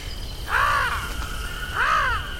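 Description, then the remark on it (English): Two loud, harsh caws from a bright purple crow-like bird the size of a Labrador, spaced about a second apart, over a low background rumble with no talking. “Kind of like if a crow was the size of a Labrador.”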